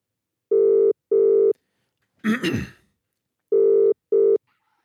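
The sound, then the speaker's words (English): A telephone ringback tone, heard as a caller hangs up and calls back, purrs in two steady, low-pitched double rings, broken by a short crackly burst of line noise before the double ring returns. No one speaks. “I'm going to hang up and call you back.”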